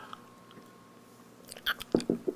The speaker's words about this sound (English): All right, let me get a drink of water real fast here.